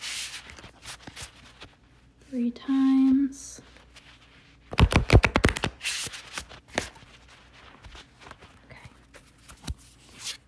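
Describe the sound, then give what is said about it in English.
A deck of cards is riffle-shuffled before two cards are drawn for a card reading, giving a quick burst of crisp, rapid flapping that lasts about a second, with a short spoken phrase just before it and soft rustling afterward. “I'm just going to shuffle these cards.”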